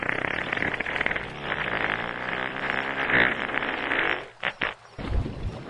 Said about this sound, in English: What happens if you light one of their farts? Actually, humpback whale farts are so powerful, you can light them underwater.